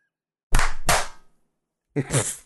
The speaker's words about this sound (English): I didn't clap very loud, though.